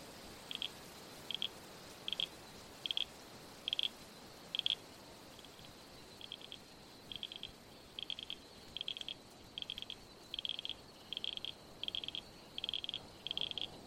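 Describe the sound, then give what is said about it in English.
Frogs croak along the banks of a creek by a salt marsh in short, bright, evenly spaced pulses, about a dozen and a half bursts repeating steadily over a soft background hiss, fairly quiet. “The leaf travels down the track and onto the salt marsh near the creek, where frogs croak along the banks.”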